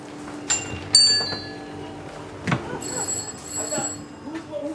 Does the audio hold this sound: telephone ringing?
yes